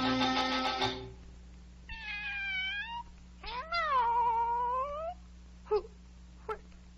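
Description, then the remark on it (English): A cat up in a tree meows several times: drawn-out, wavering mews rising and falling in pitch, followed by two short chirps, clear over a low steady hum. “Here, up in the tree in the meow. Oh, it's the Cheshire Cat from the Duchess's.”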